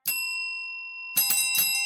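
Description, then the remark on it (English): A bright bell, used as a sound effect, strikes once and its clear tone rings out for about a second, then several quick, loud rings follow in succession, sharp, with no voices. “Your bell is so loud.”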